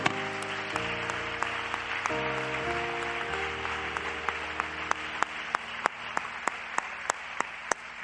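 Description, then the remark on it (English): An audience claps their hands unto the Lord in steady rhythm, many hands blending into a dense, lively patter over sustained keyboard chords, with sharper individual claps cutting through at a regular beat. “When you're seated, just put your Bibles down beside you or on your lap and clap your hands unto the Lord, because he's a good God.”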